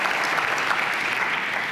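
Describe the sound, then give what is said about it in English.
Steady audience applause, a dense wash of many hands clapping at an even, sustained level throughout, with no voices standing out. “I really appreciate you clapping, you know.”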